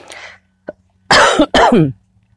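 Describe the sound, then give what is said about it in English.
Two loud, harsh coughs in close succession from a person coughing in the morning, preceded by a short breathy exhale and a tiny click, with no talking. “I don't know why I'm coughing this morning.”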